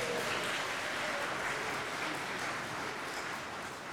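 A large crowd claps steadily in a church, a dense wash of applause sustained at even loudness for several seconds before easing slightly near the end.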